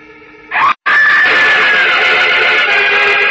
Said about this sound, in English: The girl's horrified scream rises clearly through the night air, reaching the keen ears of Superman flying high above the city.